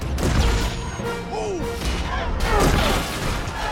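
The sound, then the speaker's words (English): A video game spaceship crash as the pilot Poe crashes: a dense, loud roar of crashing and rumbling blasts with swooping electronic chirps, sustained over a few seconds without a pause. “You're supposed to be the best pilot. God damn it, Poe. Crashing.”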